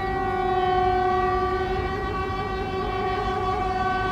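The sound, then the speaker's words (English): Horns of lorries queuing in traffic on the A20 in Aycliffe, Dover, on their way to the port, blare and merge into one continuous, loud, layered honking tone that holds steady for the whole stretch over a low rumble, with no talking. “Residents in Aycliffe have told us drivers are constantly beeping their horns as they sit in traffic on the A20 on their way to the port.”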